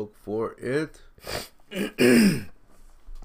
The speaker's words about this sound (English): As I clear my throat.